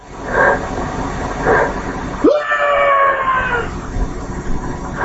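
A loud, sustained scream cuts in about halfway, one long shrill cry that holds steady before fading, set against a rough, noisy background with muffled thuds beforehand.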